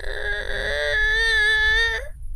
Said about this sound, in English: Go up the next level. Sounds like that the cries for help are one level higher. I'm going to continue up.